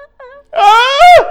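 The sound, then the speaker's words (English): A dog lets out a couple of short, faint whimpers, then a loud, drawn-out whine that wavers in pitch and swells before trailing off, with no talking. “Oh my god, you've got a doggy! Oh my god, you're so loud.”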